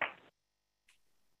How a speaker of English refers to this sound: You can change it to a snap. Snap right, snap left, snap right, snap left, snap right, snap left. I like to clap, but you could snap if you can't clap. Or if you can't snap, you could clap.